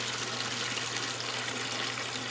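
Salt water gushes steadily from the drain valve of a building's commercial hot water heater in rural Plaquemines Parish, Louisiana, a continuous rushing and splashing flow with a low hum underneath, no voices present.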